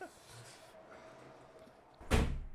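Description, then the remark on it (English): After a stretch of quiet room noise, a door is shut with a single loud, sharp slam that rings briefly before fading. “But we should probably close that door. Do it. It's making so much noise. Close the door.”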